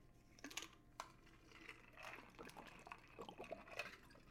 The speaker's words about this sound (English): Ow. Oh, great. I just tried to take a sip of water and spilled water all over me. Now my outfit's ruined.